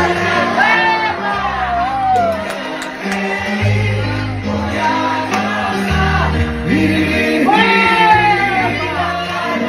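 A man lets out repeated loud, rising whoops and festive shouts of "wepa" over upbeat dance music, with a lively crowd in the background at a family party in Puerto Rico celebrating a grandfather's 90th birthday.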